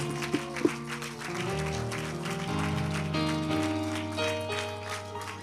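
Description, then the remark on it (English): A church audience claps hands to the Lord in a steady rhythmic patter over sustained organ-like keyboard chords, the clapping forming a dense, even texture throughout. “And could we just clap our hands to the Lord for a moment?”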